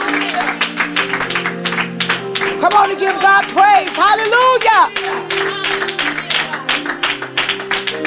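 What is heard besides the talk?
audience clapping hands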